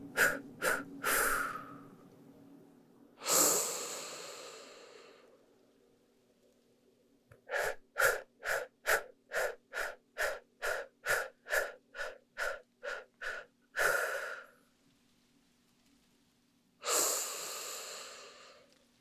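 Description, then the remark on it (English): A rapid, even series of about a dozen short, forceful exhales blown through pursed lips while flexing the abdomen, framed by slower deep breaths in and out, with no talking; a breathing exercise in a guided meditation. “We begin with our breath in deeply, expanding both belly and chest, and exhaling, pursing our lips, breathing out in short, energetic bursts, flexing the abdomen.”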